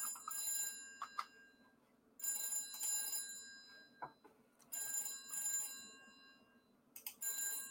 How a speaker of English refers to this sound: What's the most annoying sound in the world is a ringing phone.